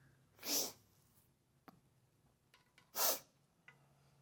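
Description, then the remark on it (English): Two sharp, breathy sneezes from a cold, about two and a half seconds apart, fairly loud, with faint sniffs and small clicks in the quiet between them. “Anyone else have the sniffles this time of year when it goes from hot to cold overnight?”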